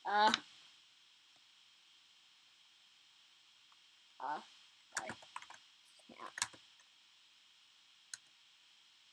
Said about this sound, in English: If you can hear this auto clicking a lot.